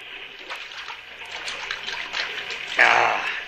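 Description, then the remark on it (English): Water trickles and splashes steadily for a few seconds, then pours a little louder and fuller toward the end as someone drinks. “Yeah, that water looks good. Have some.”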